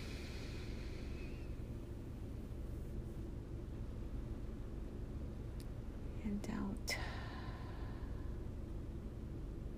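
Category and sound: vehicle, car engine running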